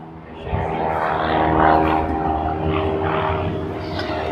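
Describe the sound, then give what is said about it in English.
A propeller airplane drones steadily overhead, its engine hum loud and continuous with a slight swell in the middle as it passes, no speech over it. “He'll wait for the plane to pass over.”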